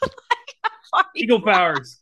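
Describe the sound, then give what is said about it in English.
A few quick, breathy laugh-like bursts lead into a person's voice imitating a red-tailed hawk screech, a strained, drawn-out cry that trails off, fairly loud. “It's not an eagle noise. It's a red-tailed hawk.”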